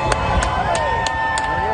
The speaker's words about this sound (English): His journey from Mar-a-Lago receiving live coverage on cable TV, supporters lining the route to cheer.